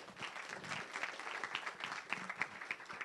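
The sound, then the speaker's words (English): An audience at an Engage ICT panel event applauds the library, a dense patter of many hands clapping at moderate loudness for about three seconds, with no talking over it. “So a round of applause for the library as well.”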